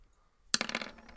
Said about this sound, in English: Weak hit. Are you hearing the dice rolls?